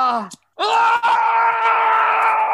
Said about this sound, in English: Screaming's only going to make it worse, sir. No, man up.